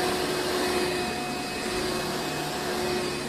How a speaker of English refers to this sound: The podcast series that I'm speaking of that's called White Noise includes an episode of a Hoover vacuum cleaner. Here it is.